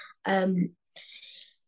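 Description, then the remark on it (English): A single sharp sneeze, a loud voiced burst followed by a breathy, hissing exhale that trails off, with no talking around it. “Bless you.”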